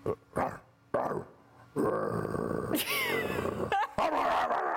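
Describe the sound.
A man loudly imitates a dog, letting out a few gruff barks and a drawn-out growling howl, with other voices joining in briefly toward the end.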